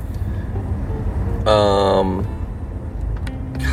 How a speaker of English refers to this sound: God, I don't know what's going on here. Sorry, guys, I'm having... just in traffic. I don't know what's going on.